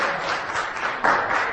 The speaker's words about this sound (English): Let's give God hand clap and praise.